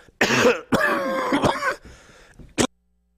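A loud cough with a rough, throat-clearing quality, running as a couple of harsh bursts and ending in a short sharp hack, with no talking.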